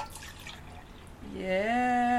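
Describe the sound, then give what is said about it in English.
Ramble Tamble Red beer pours and splashes into a glass, a bubbly gush lasting about a second, followed by a sustained, rising vocal tone. “So I'm going to pop the top. Ah, your top. Oh, my God. And the pour.”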